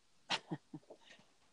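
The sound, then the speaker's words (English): A runaway dog gives a sharp, sneeze-like snort, then a few softer grunts and shuffling sounds over about a second and a half, all fairly quiet. “I got a runaway dog here.”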